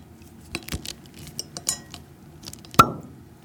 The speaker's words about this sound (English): Here we go. Let's open a Château de Fleury 2019. Let's share a glass of friendship.